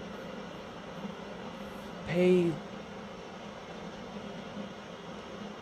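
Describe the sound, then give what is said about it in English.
Storm sounds form a steady, even wash of hissing noise that runs unbroken from start to finish, heard in the background of a guided breathing meditation, with one brief spoken word rising above it partway through. “And just gently focus on your breathing as you hear the storm sounds in the back.”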